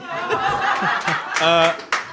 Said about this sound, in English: What was that? That was a great round of applause.